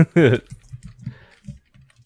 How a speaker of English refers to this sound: I'm typing to Alex so he can do his plug.